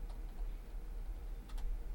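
A computer mouse clicks a few times, faint, sharp little ticks, one early and a pair near the end, over a steady low hum with no one talking.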